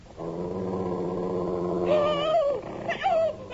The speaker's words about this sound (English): Help! Help! Get it off me! Get it away! Help! I see the damn thing! It's a wolf!